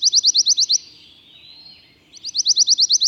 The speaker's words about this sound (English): This quirky warbler is also unique in its tendency to sing every month of the year. So, whether they only pass through your neck of the woods while migrating, or are year-round residents, you can enjoy the pine warbler's sweet little trills.